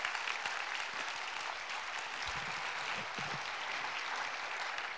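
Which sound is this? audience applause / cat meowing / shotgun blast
audience applause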